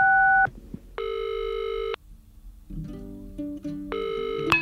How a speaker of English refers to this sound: Let's call her now on the funny phone. Beep, beep, beep.